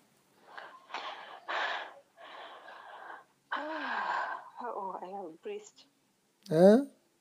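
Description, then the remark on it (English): Several loud, heavy breaths in quick succession over the phone, followed by strained, groaning vocal gasps and one sharp final gasp, with no words spoken. “I'm breathing.”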